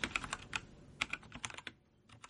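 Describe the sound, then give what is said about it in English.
Rapid, crisp clicks of someone typing on a mechanical gaming keyboard in an irregular burst of keystrokes that slows and trails off toward the end. “Let me click on my gamer keyboard.”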